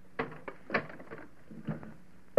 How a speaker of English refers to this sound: Putting a bar across the door? Certainly.